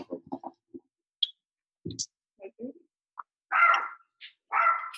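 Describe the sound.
A dog barks twice in loud, harsh bursts near the end, following scattered bits of quieter voices and small sounds earlier on.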